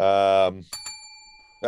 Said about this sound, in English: the dinger, that's the best question bell.